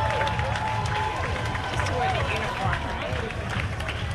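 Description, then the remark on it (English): A dense, steady crowd roar at the Pride Parade 2006 in Vancouver, on Sunday, August 6th, with scattered clapping and rising whoops and hollers from many voices, loud and continuous throughout, with a low rumbling beat underneath. “And the clapping and the hooting and the hollering just never stops.”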